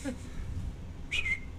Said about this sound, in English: I think I heard a whistle. Should I whistle back?